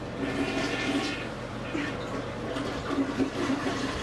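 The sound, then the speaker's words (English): A toilet flushes, a steady rushing swirl of water lasting several seconds with a gurgling undertone, fairly loud and continuous without pauses. “Flush.”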